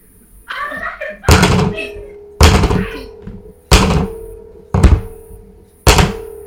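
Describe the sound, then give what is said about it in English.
Five coins drop one at a time into a metal box beside someone's head, five loud clanking hits about a second apart, each leaving a low metallic ring. A brief voice sounds at the start. “And as you're close to passing out from the pain, you begin to hear the clanking of coins falling into this metal box next to your head.”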